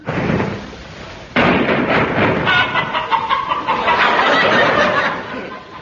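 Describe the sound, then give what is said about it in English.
A flock of chickens clucking and squawking in a dense, overlapping chorus, loud, kicking in abruptly after a quieter, noisier opening and continuing busily to the end. “The sound of chickens has specially been added for people living in rural districts.”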